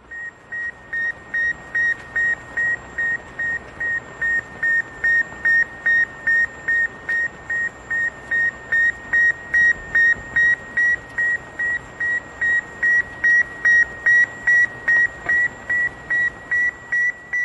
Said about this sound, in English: As Sputnik separated from the booster, its antennae unfurled and the transmitters began sending signals. Ladies and gentlemen, Diffusion is proud to present Sputnik 1.